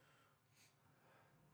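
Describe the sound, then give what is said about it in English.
A single quick, breathy allergy sneeze, a short hissing burst over a faint steady background hum, with no talking. “We were sneezing a lot today, and not because of coronavirus.”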